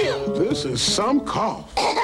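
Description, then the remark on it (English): A person coughs a few times in quick, harsh bursts, fairly loud, mixed with throaty vocal sounds and strained breathing between the coughs. “This is some cough.”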